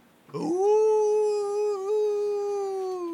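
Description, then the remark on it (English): A puppy lets out one long, drawn-out howl that starts abruptly and holds a steady, wavering pitch for about three seconds, loud, with no talking. “Brown makes you hear the puppies.”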